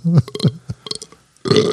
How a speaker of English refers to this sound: Like force a burp.